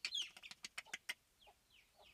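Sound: chickens clucking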